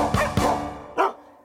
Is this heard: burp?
no